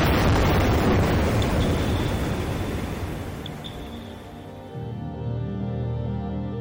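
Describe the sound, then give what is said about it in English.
A single powerful underwater air gun blast from seismic surveying, in which boats fire about 30 or 40 air guns at once to locate spots on the ocean floor to drill for fossil fuels: a deep, booming rush that rolls on and slowly fades into a low, droning rumble with faint steady tones, with no voices. “So you'll have boats with about 30 or 40 air guns that'll all go off at once.”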